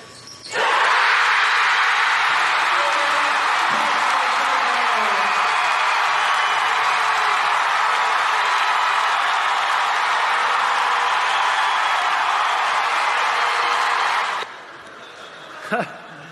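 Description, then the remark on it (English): A college basketball crowd at Taylor University's Silent Night Game, silent until the team scores its 10th point, suddenly erupts into loud cheering, a dense, sustained roar that holds steady for around fourteen seconds before cutting off abruptly. “When they score their 10th point, the crowd is silent before that, and then they erupt.”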